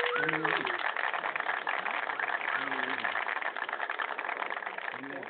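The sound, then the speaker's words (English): A steady engine hums throughout as a new car is driven on the road, a constant droning rumble like riding inside a moving vehicle, with muffled voices faintly audible beneath the noise. “So we're going to hit up the road in the new car.”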